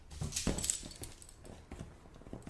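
A dog's collar tags jingle lightly a few times near the start as the restless dog moves during filming, small metallic tinkles mixed with soft shuffling and movement, fairly quiet, with no talking.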